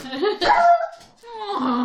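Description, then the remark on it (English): A dog barks at intruders in two loud, drawn-out bursts with a brief pause between them, the calls tonal and slightly whiny. “Yeah, you bark at those intruders.”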